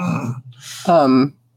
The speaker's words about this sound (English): And you can hear him kind of like not gasping, but just like kind of groaning in pain.